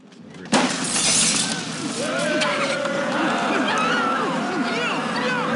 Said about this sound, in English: the biggest part of that was the initial breaking of the window